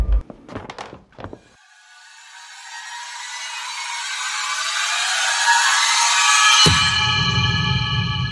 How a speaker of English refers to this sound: Nadia turns Stella's light down a little and pulls the bedroom door shut behind her as she leaves the room.